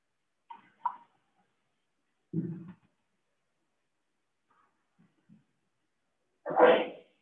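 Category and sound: human body sound, sneeze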